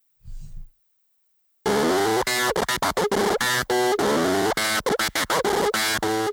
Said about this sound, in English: This must be like another effects pedal he's got on the... Yeah, this is turntables and his pitch pedal, and probably a distortion pedal as well. Uh-huh. He might have a wah on that.